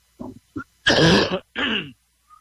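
A couple of short throaty grunts, then two harsh, loud coughs from someone who is ill, one right after the other, with no talking.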